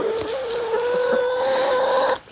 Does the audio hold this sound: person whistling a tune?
no